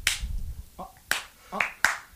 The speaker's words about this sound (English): Yeah, you got to slap. You got to put the fingertips in the palm, dude, to get the good slap.